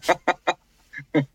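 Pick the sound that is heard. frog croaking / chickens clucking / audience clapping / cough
chickens clucking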